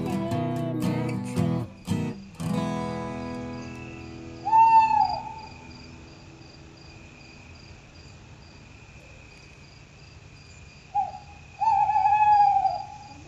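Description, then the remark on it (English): An owl hoots twice, each call a wavering, fairly loud note several seconds apart, over a steady chirring of crickets, after a few sharp knocks at the start. “oh, wise old owl, sitting in a tree.”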